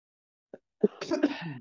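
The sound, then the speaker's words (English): A short throaty burst, then a louder cough-like sound that breaks into a rough, raspy expulsion lasting about a second, with nothing else around it. “That shit made me fucking cough.”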